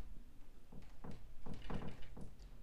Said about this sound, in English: No, it's just wind. All right, Mothership is literally on the other side of the room, but yeah, it's wind. It's very windy here right now.